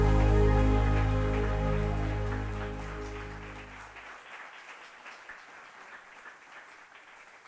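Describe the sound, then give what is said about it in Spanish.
An audience claps steadily in applause for the Lord Jesus, a dense, crackling wash of applause that keeps going. A held keyboard chord rings underneath at first, then fades out after about four seconds, leaving only the clapping. “Demos un gran aplauso a nuestro Señor Jesús.”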